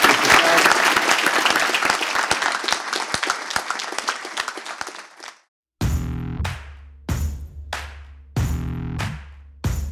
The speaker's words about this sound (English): And feel free to speak to our amazing speakers, but a massive round of applause to them.